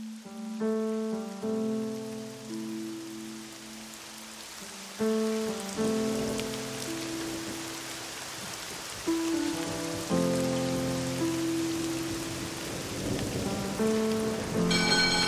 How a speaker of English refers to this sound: That's when I looked up. It has started to rain.